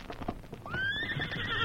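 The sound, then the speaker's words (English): A horse, Silver, lets out a loud, drawn-out whinny that rises then holds steady, following a quick patter of many hoof beats coming up a trail on hard ground, with no one speaking. “Me hear many hoof beats coming up trail.”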